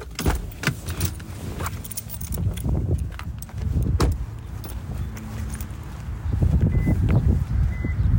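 Someone climbs out of a parked car, about to walk into a movie theater to see Jurassic World Dominion: keys jingle, clothing rustles, and a few sharp thuds like a door shutting, over a low steady rumble of traffic. No one speaks.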